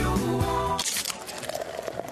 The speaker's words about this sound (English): Do you hear that Coors Light being poured? It's the perfect temperature. How can I tell just based on the sound? I can't.